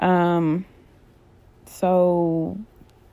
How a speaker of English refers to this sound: Oh no. Not the yawns.